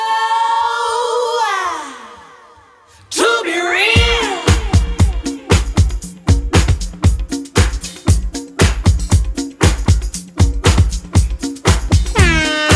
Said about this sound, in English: Perfect time for the air horn.